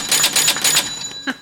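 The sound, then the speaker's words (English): A bell sound effect, played from a sound pad for the Food Fight Cage Match, clangs rapidly about four times, bright and metallic with a sustained high ring, then two shorter sharp strikes follow. No one talks over it. “We haven't heard that bell in quite some time.”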